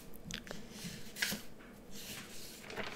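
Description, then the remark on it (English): Paper is picked up and handled, giving soft, crinkly rustles and brief crackles with one sharper crinkle in the middle. The sounds are quiet and irregular, and there is no talking. “Let me actually hold the paper.”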